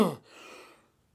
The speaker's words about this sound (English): Excuse my coughing. No, it's not COVID.